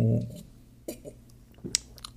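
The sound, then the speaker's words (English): Someone takes a drink, with a few soft gulps and wet swallowing sounds spaced out over a couple of seconds, quiet and with no talking. “And if destiny is it, then I guess, well, then I'm just destined to drink it.”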